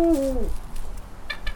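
A single deep hoot from a female Eurasian eagle owl slides downward in pitch and fades within half a second, loud, followed by faint outdoor ambience and a brief high chirp near the end.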